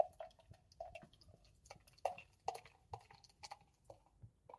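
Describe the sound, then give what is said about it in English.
A dark spicy porter beer glugs out of a bottle into a glass in a faint, irregular series of hollow gurgles and wet clicks, quiet, with no one talking. “Let's see how it pours.”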